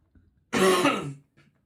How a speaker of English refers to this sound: Cough, I'm sorry.